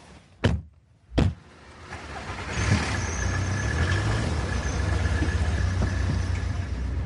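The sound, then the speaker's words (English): Two sharp thuds, then a car engine builds as it accelerates while driving on the A505 near Duxford, settling into a loud, steady rumble of engine and road noise, with no talking. “So we're on the A505 near Duxford, and Dave's driving his car.”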